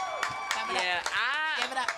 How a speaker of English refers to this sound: Give me a round of applause again. Come on.